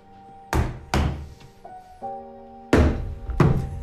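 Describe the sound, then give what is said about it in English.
Someone bangs on plywood: four heavy, hollow thuds in an uneven rhythm, loud. Faint sustained tones hum quietly between the blows. “He's just banging on plywood.”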